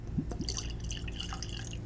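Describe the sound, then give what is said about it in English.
121.1 proof whiskey is poured into a glass, a short run of soft splashes and drips with a faint glassy ring, no voices. “So let's go ahead and get it poured.”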